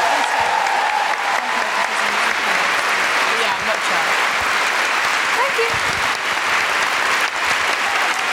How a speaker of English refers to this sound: Sian, you have been an absolutely amazing guest. Big round of applause for Sian Clifford.